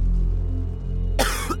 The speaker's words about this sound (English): coughs as he sees black smoke rising.